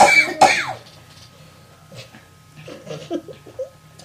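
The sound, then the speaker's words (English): Two loud, harsh coughs burst out at the start, followed by quieter throat-clearing sounds and faint murmurs, with a low background hum throughout; a person coughing in disgust. “I'm having a coughing attack because that was disgusting.”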